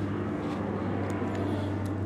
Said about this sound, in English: Can't believe we're gonna get interrupted by an airplane over here.